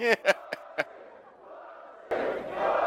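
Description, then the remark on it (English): A large wrestling arena crowd chants "pussy" in a rhythmic, evenly spaced beat as Raven and Richards walk out, then swells into a loud, sustained roar of cheering and shouting. “The crowd's chanting pussy, pussy, pussy.”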